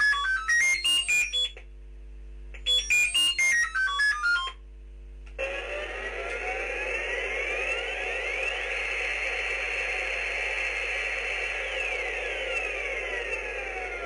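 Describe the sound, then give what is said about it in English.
A Star Blazer Electronic Space Command Belt toy from around 1981 plays two short bursts of rapid, warbling high-pitched beeps, then switches to a steady, buzzing hiss with swooping sci-fi tones sliding up and down beneath it. “Those were the sounds of Star Blazer, the Electronic Space Command Belt.”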